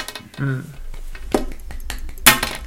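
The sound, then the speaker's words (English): A pen smacks against a glass table several times, sharp hard clicks at irregular intervals, fairly loud, the last one strongest, after a brief voiced sound at the start. “I really don't know if you should have just smacked this glass table, personally. That's a pen.”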